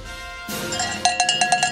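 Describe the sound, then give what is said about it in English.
A sustained bright musical tone starts, then a bell rings in a quick run of about seven sharp, ringing strikes over the music, played as lock music when a Mississippi State +6.5 bet is locked in, with no talking. “There's your bell.”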